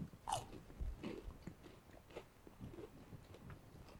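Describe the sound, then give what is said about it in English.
A sharp crunchy bite into a radish, followed by several seconds of wet, crackling chewing in an uneven rhythm, with no talking. “The big question though is, what does it taste like? Right, let's try this then.”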